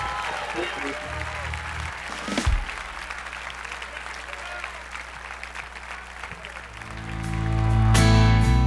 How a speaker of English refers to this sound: Well, clap your hands and rejoice.